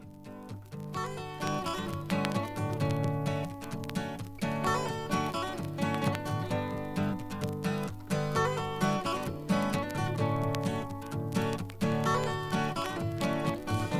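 A song's instrumental intro plays, a full, steady band texture with a driving rhythmic pulse and bright harmonic layers, loud and continuous throughout with no singing or talking.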